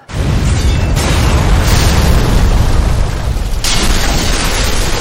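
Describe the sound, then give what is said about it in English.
A house explodes after a fire started near its kitchen: a massive, sustained explosion roars loudly and continuously for several seconds, with deep rumbling low end and crackling bursts surging through the blast. “And then there's this huge explosion.”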